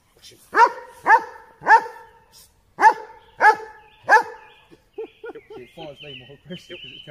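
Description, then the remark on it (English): A large dog barks six times in a loud, steady, evenly spaced series, followed by a stretch of quieter high-pitched chirping and whining sounds, during a demonstration of how dogs bite. “Yeah, it's a fucking size of that dog,”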